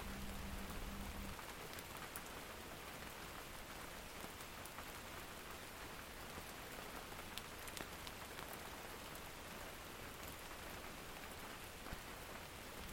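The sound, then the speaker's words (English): Steady, dense rain falls on a small cabin by a stream, a constant hiss of drops with no voices. A faint low rumble of distant thunder surfaces briefly at the very start. “Now this particular recording is quite evocative for me, with the distant rumbling of thunder”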